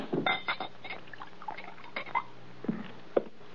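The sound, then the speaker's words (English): A drink pours into a glass inside a wagon used as a home, a short splashing trickle with a few faint clinks and taps, no voices. “Pour this down.”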